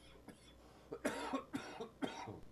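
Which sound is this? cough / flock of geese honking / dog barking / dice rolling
cough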